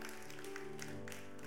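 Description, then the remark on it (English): A few soft, scattered hand claps, a polite golf clap from a church audience at the end of a service, sound faintly over a steady held musical chord with no voices. “I'm not even going to get onto you for golf clapping right there, but that was a golf clap if I've ever heard a golf clap.”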